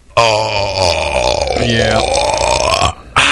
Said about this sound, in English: came in here and burped, and the whole room smelled